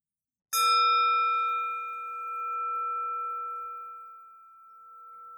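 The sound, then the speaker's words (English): A meditation bell is struck once to close a meditation practice, a bright metallic hit that blooms into a long, sustained ringing tone, gently wavering in loudness as it slowly fades. No voices are heard. “And then I'll go ahead and ring the bell to close the practice.”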